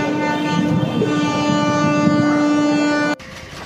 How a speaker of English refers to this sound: My train arrived.